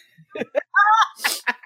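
A single loud sneeze: a few short breathy catches, a rising drawn-out vocal "ah" intake, then a sharp, hissing burst of air, followed by a brief exhale.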